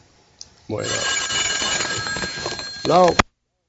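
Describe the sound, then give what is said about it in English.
A telephone bell rings loudly during a taped interview in one sustained, rattling burst lasting a few seconds, with a brief voice-like sound near the end before the tape is stopped and cuts off abruptly into silence. “I really wanted to hear what he was going to say about The Searchers, but they stopped tape after the phone rings.”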